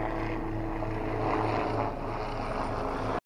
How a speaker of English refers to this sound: oh, just a second, there's a police helicopter going above me. I live right next to Essendon Airport.